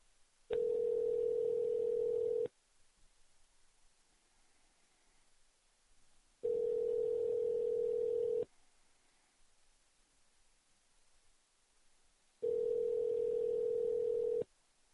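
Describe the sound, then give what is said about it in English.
A telephone line tone sounds while a call is placed on the radio: three steady, loud two-second beeps separated by long silent gaps, with no voices. “I'm not going to take this phone call here. I'm going to call him up on the radio.”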